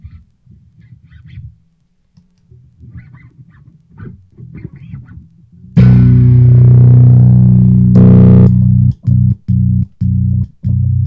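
Soft bass noodling gives way to a loud, sustained ringing bass note, which is then chopped abruptly on and off into a series of hard stutters as a kill switch mutes the signal.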